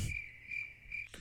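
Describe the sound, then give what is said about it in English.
A steady, high-pitched cricket trill sound effect played from a soundboard runs on its own for about a second, continuous and fairly quiet, ending abruptly with a soft thump. “And you can't add to it and then put the crickets on.”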